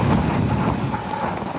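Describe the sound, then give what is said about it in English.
Steady low rumbling wind gusts buffeting stadium microphones at a track 100-meter final, a dense roar that stays loud throughout with slight surges, with no voices or other distinct sounds. “Gusts of wind echoing off the microphones.”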